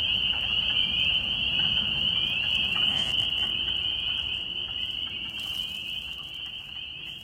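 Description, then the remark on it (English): A dense chorus of spring peeper frogs fills the air, countless shrill peeps overlapping into a steady, ringing wall of sound over a low background rumble, with no voices. “he said that this was a type of frog called a spring peeper.”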